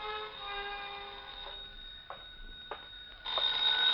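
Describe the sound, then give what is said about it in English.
A telephone rings in an apartment with a bright, steady electronic trill, its tone holding for several seconds and swelling louder toward the end, heard alone with no voices. “showered, dressed, and was about to head for New York when the phone rang.”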